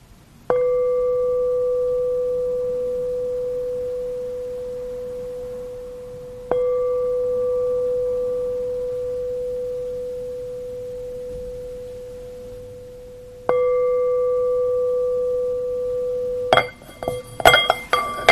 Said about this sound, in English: So listen to the bell and see how it's received spontaneously as pleasant or unpleasant or neutral, the sound of the bell.